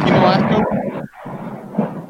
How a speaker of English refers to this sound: Was that thunder? Yeah, bro. We heard that through the pod. Oh, yeah. We going to die tonight. Definitely, taking in water. Definitely a chance we lose power. Oh yeah, I just heard it. We just heard it in ours too.